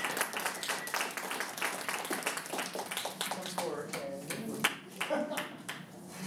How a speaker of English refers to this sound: So please give her a round of applause.